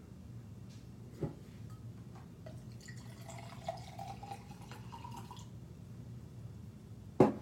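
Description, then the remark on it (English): Vinegar pours and trickles into a container, filled up to a marked vinegar line, over a low background hum, with a few drips, ending in a sharp knock. No one speaks. “Okay, so vinegar line right there. Check that out. You just fill it up to there.”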